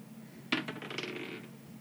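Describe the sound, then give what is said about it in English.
Dice are rolled onto a table: a sharp initial impact, then they skitter and rattle for about a second before settling, fairly clear with no talking. “Nat 1. Okay. That doesn't work out so good. Can I have new dice, please?”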